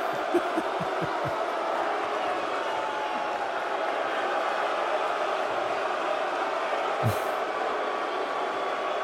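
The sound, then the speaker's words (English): A large crowd boos a man steadily after he says a line, a dense, sustained roar that holds at an even loudness throughout, with a few dull low thumps early on and a brief sharp burst near the end. “See, this is how you control a crowd that's booing you.”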